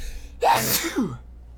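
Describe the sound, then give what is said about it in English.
A single sharp sneeze bursts out with a quick intake of breath and a forceful noisy release, then a brief trailing exhale before quiet. “My lungs felt all weird, and I was sneezing like crazy.”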